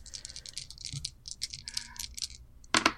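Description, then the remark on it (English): Three dice rattle and clatter in a quick run of sharp little clicks, ending in a louder burst as they tumble across a hard table surface, landing on a 6, a 3 and a 4; no one speaks. “Three dice? We're cool with that? Three dice is fine with me.”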